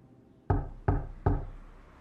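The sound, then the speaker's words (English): Three firm knocks on a door, fairly loud, in a quick uneven rhythm, each a hollow thud that rings briefly before the next. No one speaks. “took me nearly 5 minutes to process that sound that I was hearing was knocking.”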